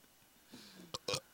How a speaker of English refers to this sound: Dry burp.